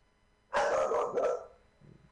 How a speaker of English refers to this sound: Dogs again.